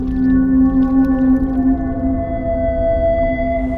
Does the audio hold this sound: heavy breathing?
no